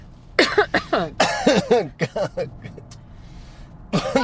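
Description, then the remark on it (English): A loud fit of coughing: a rapid string of harsh bursts for about two seconds, a few trailing weaker coughs and a short lull, then another burst at the end. “Now's the time on the show where we cough uncontrollably.”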